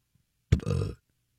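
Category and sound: human body sound, burp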